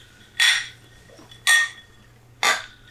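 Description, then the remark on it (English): Three people toast over microphones: three bright, ringing clinks of glasses touching, evenly spaced about a second apart, each with a short shimmering tail, over a faint low hum, with no talking. “We just cheersed over the three microphones.”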